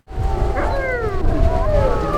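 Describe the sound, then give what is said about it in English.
Several of the 33 wolves at a wolf ranch in Palmdale, in the Antelope Valley north of Los Angeles, howl together in a chorus of long, overlapping wavering tones that slide up and down, fairly loud over a low rumbling background, with no one speaking. “Right now, there are 33 wolves at the Wolf Connection Ranch in Palmdale.”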